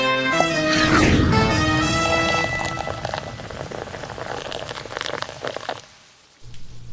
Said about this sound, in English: A quick update here from Shallotte, North Carolina. Dorian has started dumping heavy amounts of rain. This is the 18th fairway at River's Edge. Luckily, this place drains well.